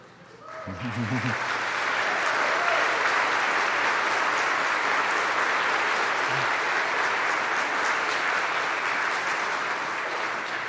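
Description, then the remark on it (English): An audience at a confirmation service applauds the clergy and teachers who instructed the candidates; the applause swells within a second or two and holds as a steady, dense roar of clapping hands for about ten seconds, with a brief low vocal sound at the start. “So if I've just described you, would you please stand up so that we can give you a hand of applause?”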